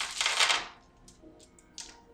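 Dice clatter and rattle as someone rummages through a pile of dice looking for more dice, a dense burst of plastic clicking followed by a few scattered taps, fairly quiet with no voices.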